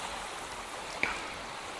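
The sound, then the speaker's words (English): Steady rush of water fills the whole clip, water sloshing and running in a bathtub, with one small sharp splash or drip standing out about halfway through. No voices. “This is a bathtub.”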